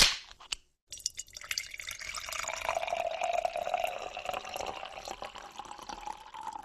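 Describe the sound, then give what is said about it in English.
A beer bottle cap pops off with a short fizzy hiss, then after a brief pause beer glugs steadily into a glass, the pour's pitch rising as it fills. No one speaks. “and then we always act like we're opening a beer and pouring it?”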